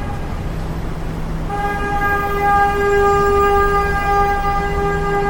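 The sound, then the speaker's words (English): A car horn blares loudly and continuously for several seconds over a rumble of street traffic on a New York City street, starting after a brief moment of background noise. “Honking horns, very New York City sound.”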